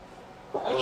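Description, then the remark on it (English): A single sneeze bursts out near the end after a short quiet stretch, fairly loud, with a sharp breathy hiss. “Bless you.”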